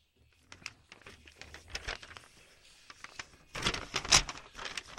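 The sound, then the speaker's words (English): A blue sheet of paper, news from the Central Kindergarten Community, rustles and crinkles in a string of quick, irregular crackles, starting softly and growing louder and denser toward the end. “What else you got? A blue sheet of paper.”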